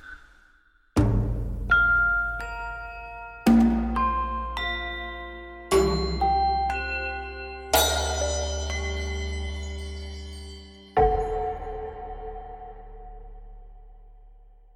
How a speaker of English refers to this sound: That was a good bell. If the bell's too loud at the beginning, then it doesn't fade away nicely. The best part of the bell ringing is the fading away.